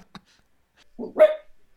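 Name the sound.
dog barking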